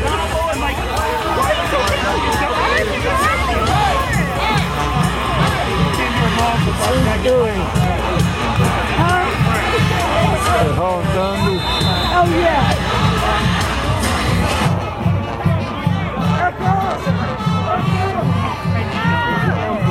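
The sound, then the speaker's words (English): A big stadium crowd at an American football game roars steadily after a ball recovery, with dense overlapping voices and cheering, punctuated by a rhythmic low thumping beat throughout, the noise staying loud the whole time. “The crowd is coming around.”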